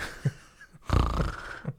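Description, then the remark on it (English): Someone imitates snoring with their voice: a brief snort, then one long, rough, rattling snore lasting under a second, ending with another short snort. No talking. “One that snores like... And the other that snores like me.”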